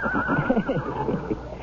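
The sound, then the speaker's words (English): A horse, Malachi, a deep chestnut with a black mane standing 17 hands and weighing 1,200 pounds, whinnies: a loud, wavering neigh that rises and falls in pitch for about a second and a half, heard on its own with no talking. “He's saying hello to you, Stevie.”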